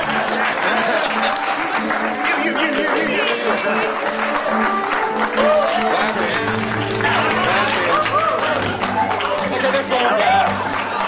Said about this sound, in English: There must be no more clapping. They're done. Never stop clapping.